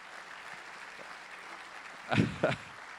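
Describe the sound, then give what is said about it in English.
Brief clapping from an audience as Dr. Allen is brought up to the stage to preach arrives as two short, sharp bursts after a stretch of quiet background hiss, then stops abruptly. No one speaks. “They're going to clap right now.”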